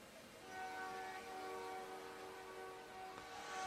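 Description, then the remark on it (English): A train horn blares in a long, steady, multi-tone blast over the low rumble of a passing train, holding for several seconds without any talking; the train rolls by during a Gibbon Buffaloes football game. “And there's the train right on time.”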